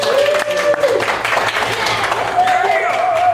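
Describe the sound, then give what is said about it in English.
A live audience at VO North applauds with dense, steady clapping throughout, mixed with cheers and whoops and a high whistle rising above the crowd noise. “Everybody applaud.”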